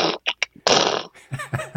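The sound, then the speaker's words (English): A voice beatboxes punch sound effects into a microphone for a movie: three quick breathy bursts, then a long harsh hissing blast, followed by a few short, buzzy vocal grunts. No speech. “but that became very obvious very early on that that didn't cut it, and then we had to kind of blend it with real punches and there's a lot of beatbox punches in the movie.”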